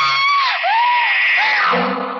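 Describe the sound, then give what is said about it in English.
A woman's loud, shrill scream of terror, sustained for about two seconds with wavering, breaking pitch, alone with no talking, as a man holding a raised knife stands over her bed. “I screamed.”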